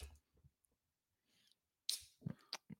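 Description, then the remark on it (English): After a few quiet rustles, a can or bottle of double IPA beer is cracked open with a sharp, bright hiss, followed by a couple of short clicks and clinks. “But I'm going to open and drink you anyway.”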